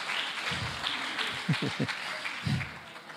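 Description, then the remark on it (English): An audience claps steadily in a dense, continuous wash of applause, with a few brief voices or cheers rising through it midway, clapping for the young people under 35 who have stood up. “Why don't you give them a clap, guys?”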